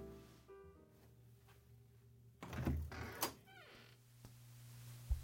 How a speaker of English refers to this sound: Let's get the door.